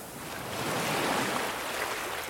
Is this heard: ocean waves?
yes